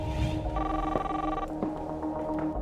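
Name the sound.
telephone ringing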